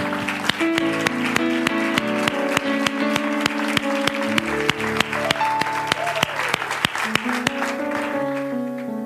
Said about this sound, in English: Would you let them know? Would you give them a great round of applause and let them know just how incredible they are?